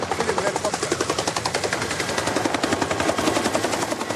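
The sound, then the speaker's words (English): Helicopter rotors thump steadily while rapid bursts of gunfire crackle over them in a film's war scene, loud and continuous, with a faint voice buried in the din. “and he had arranged all those helicopters, and he said to the cameraman, film the helicopter. Go quickly, because helicopter are now coming.”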